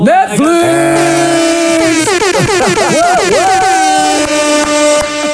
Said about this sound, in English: Do you have one of those air horns?